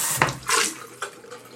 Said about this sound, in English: Now I'm going to wash the glass. Oh, my God. That was the best ASMR noise possible. Yeah, clinks. Water running.